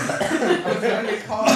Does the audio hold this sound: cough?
yes